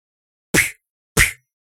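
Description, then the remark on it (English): Two loud punch sound effects in a fight scene land about half a second apart, each a sharp, meaty whack with a brief ringing tail, standing alone with no talking around them. “I love that when the punches were the...”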